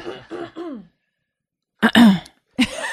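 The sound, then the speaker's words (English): A person clears their throat: a soft voiced murmur, a short pause, then two rough, harsh coughing bursts. “But then, hang on, there's something in my throat. This can't be good for podcasting.”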